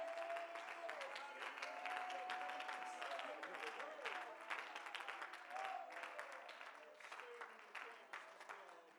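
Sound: audience clapping hands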